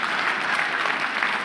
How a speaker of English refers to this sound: That may be the only applause I get all day.